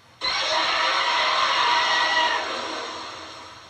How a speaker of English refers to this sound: Zambolar's roar is a combination of roars modified from both Godzilla and Gamera.